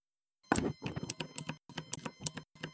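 A quick flurry of sharp, clicky keystrokes on a mechanical keyboard, fairly loud, tapping out in irregular bursts with brief pauses, no voices present.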